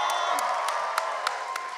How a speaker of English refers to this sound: Wait, keep clapping.